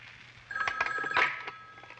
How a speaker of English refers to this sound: Don't be alarmed. That phone is listed as my office.